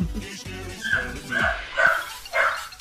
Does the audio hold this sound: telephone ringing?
no